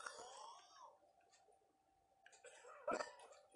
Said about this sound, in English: Did you hear? I don't know if you can hear in the back. They're fucking coughing. People are fucking dying.